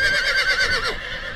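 horses neighing

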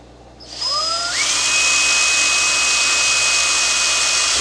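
power drill drilling holes

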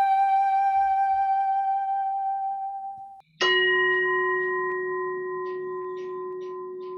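meditation bell ringing

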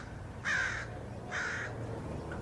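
crows cawing

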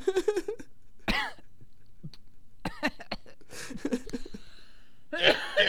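coughing

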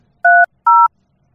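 telephone number being dialed

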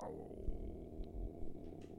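dog growling

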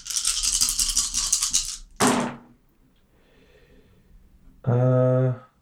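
dice rattling

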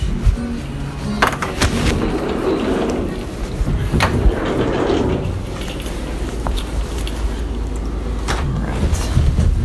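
door opening and closing

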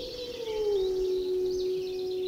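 wolves howling

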